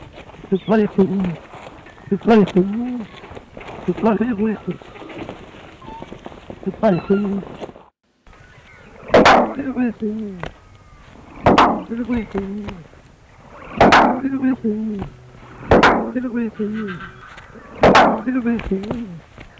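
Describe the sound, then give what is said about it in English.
A male musk duck called Ripper, reared from an egg at Penthorpe in the UK, produces gruff, speech-like phrases imitating a human voice. These are followed by sharp, splashy percussive bursts roughly every two seconds as he splashes water in his pen, each with a low rumbling call. “The vocalisation is most likely an imitation of something he heard from his caretaker all the time.”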